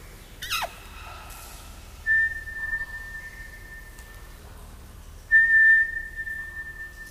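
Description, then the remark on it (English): Someone whistles the eerie X-Files theme: a quick downward swoop, then two long, sustained high notes with a short gap between them, clear and alone over a faint background hiss. “What's the X-Files theme? Da-na-na-na.”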